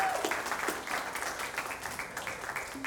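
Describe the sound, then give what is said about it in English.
An audience applauds the worship team steadily, many hands clapping in a dense, even wash of sound that holds at a moderate level for a few seconds without pause. “Can we give your worship team a round of applause?”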